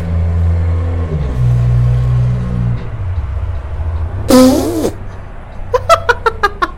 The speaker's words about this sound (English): Don't tell me that was their car. What? Do you know them? No. That was just like an old, like, looking car. Like, teal yep. car that yep. just, like, did not sound loud like noises. It was supposed to sound like that.